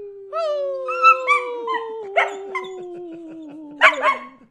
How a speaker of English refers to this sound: So basically, all the dogs are going to sound like that when I'm rolling through the field.